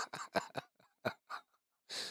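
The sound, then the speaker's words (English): A run of quick, breathy nasal bursts in an uneven rhythm, then a brief pause and one longer, hissing sniff to finish. A sniffle, with no talking. “Oh, you got a sniffle?”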